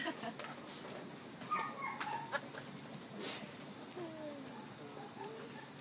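A dog whimpers softly in a series of thin, high whines that rise and fall, fairly faint against light background noise.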